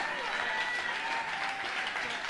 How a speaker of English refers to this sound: Look at this. People are standing up and clapping for what he's saying here. For the greatest harvest.